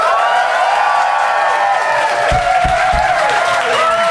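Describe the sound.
A crowd applauds and cheers loudly and steadily for about four seconds, voting by applause for the side judged to have made the best case in a debate, with voices shouting and whooping over dense clapping and a few low thumps partway through.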